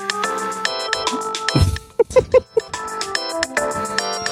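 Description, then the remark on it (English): A phone plays the long "By the Seaside" ringtone, a bright melodic alert in chiming, bell-like notes with a bouncy, repeating pattern, briefly broken in the middle by a few short, low thumps and pops. “Now here's By the Seaside.”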